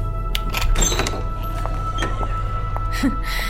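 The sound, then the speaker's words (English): A door is opened with a few mechanical clunks and thuds, spread over a couple of seconds, against a steady low hum. “Open the door”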